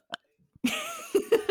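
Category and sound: human body sound, deliberate burp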